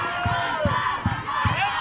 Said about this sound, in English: Still a rowdy crowd here.